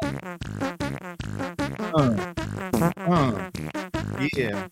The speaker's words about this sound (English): some Twitch subscribers with the fart song.